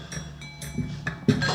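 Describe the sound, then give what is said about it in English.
A telephone rings in short repeated bursts at 4 o'clock in the morning, its bright electronic trill clear against the quiet, with no one speaking. “Who the hell would call at this time of night?”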